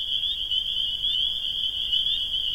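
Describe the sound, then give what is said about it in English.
A steady, shrill chorus of frogs or crickets trilling without pause in a field, a continuous high-pitched drone over faint low background rumble. “And recording either frogs or crickets in a field as a bonus track.”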